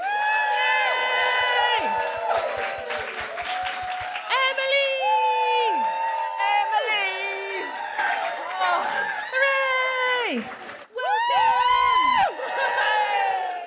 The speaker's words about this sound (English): We're going to crack straight on, ladies and gentlemen. So please put your hands together. Welcome to the stage our brilliant guest for tonight.